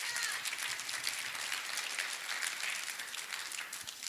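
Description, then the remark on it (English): An audience at a sermon applauds steadily as a clap offering to the Lord, many hands clapping together in a dense, sustained wash of sound that holds level for the whole stretch, fairly loud with no talking over it. “Come on, give the Lord a clap offering tonight, amen.”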